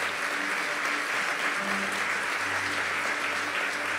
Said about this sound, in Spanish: Dele un aplauso a nuestro Dios.